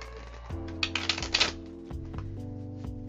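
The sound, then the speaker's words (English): A short burst of quick papery clicks and flutters as tarot cards are shuffled, fairly crisp, over a soft sustained musical drone that continues after the shuffling stops. “Shuffle a little bit more. Just a little bit.”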